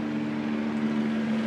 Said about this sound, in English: Cops are coming. As I talk to you over this helicopter, should we find out what that is about?